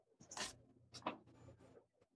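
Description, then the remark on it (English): Dice rattle and tumble across a surface in two quick clattering bursts, fairly quiet, followed by a brief faint settling rattle, with no talking; the dice are rolled for an insight check. “yeah, can I roll an insight just to see if that's possible?”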